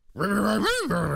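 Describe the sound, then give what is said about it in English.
A person growls like a dog, imitating how Bruce Willis might sound as a dog: one low sustained rumble with a brief rising swell in the middle, fairly loud, with no other talk. “What does he sound like as a dog?”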